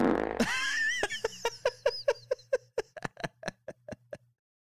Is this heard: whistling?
no